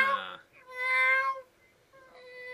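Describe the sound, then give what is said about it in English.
A person imitates a cat, giving three drawn-out meows in a row, the middle one longest and loudest, sounding clear with no other talking. “Okay, enough of that. He's a cat.”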